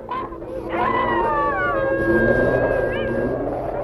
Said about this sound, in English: Oh, here come the wolves.